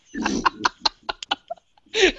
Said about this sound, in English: I believe for our listeners who couldn't hear, she has made raspberries.